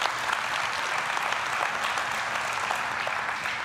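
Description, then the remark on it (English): A crowd applauds steadily, a dense wash of many hands clapping at an even level throughout without pausing or building, with no voices rising above it. “Sure, you can clap for Katie.”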